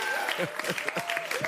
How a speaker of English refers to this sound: Okay, oh, I see. You're clapping. You can't do that. Thank you. I appreciate it.